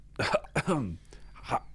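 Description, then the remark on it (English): A voice imitates an uncle's habitual throat clearing, making a quick series of rough, guttural hacks, about three bursts in under two seconds, fairly loud with no other talk. “We've had a running joke for quite a while when we impersonate Uncle Lavore. He's constantly clearing his throat”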